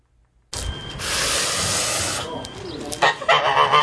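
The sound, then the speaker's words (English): A goose named Abui, in Guangxing village, Yunlin, Taiwan, gives a loud, harsh warning call, a raspy, noisy stretch of sound followed by several sharper, more nasal honks toward the end. “Calling a warning and packing a stranger's shoes.”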